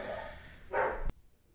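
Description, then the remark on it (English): A brief burst of dog barking, somewhat muffled, lasting under half a second before cutting off abruptly into near silence. No one speaks. “Dogs are just barking.”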